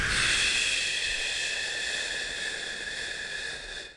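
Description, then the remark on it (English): A long, forceful "shh" exhale during a breathing exercise streams out steadily for about four seconds, pushing all the air out, a bright hissing breath that slowly fades as the air runs out. “Like first off with the breathing exercises, I will like shh and push all the air out.”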